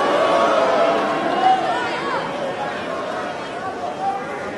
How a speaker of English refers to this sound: Are you going to get vaccinated, Novak? And he just kind of breaks the concentration. People are booing, which is good.